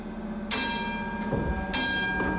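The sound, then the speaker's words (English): A tram on Nassau Street rumbles steadily as it pulls away into the darkness, its bell clanging twice with bright ringing tones that linger over the low, continuous rolling noise. “The Alba boarded a tram, and like a Cezanne monster, it carried her off.”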